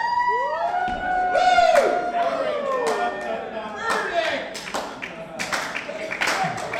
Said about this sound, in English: Ladies and gentlemen, that's a slow clap from the skeptical audience member. Slow claps trump everything.